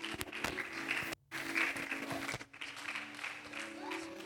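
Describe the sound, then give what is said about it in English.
An audience applauds for a woman in a dense, steady wash of clapping with crowd voices mixed in. The sound cuts out briefly twice along the way. “Let's give it up for her.”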